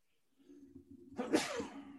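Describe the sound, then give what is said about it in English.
A single loud sneeze: a short rising intake of breath builds for about a second, then bursts into a sharp, explosive 'achoo' that trails off quickly. “Bless you.”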